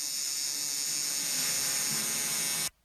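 A tattoo machine buzzes steadily as a new face tattoo is done, a dense, bright mechanical whir that holds constant for nearly three seconds before cutting off abruptly. No voices are heard.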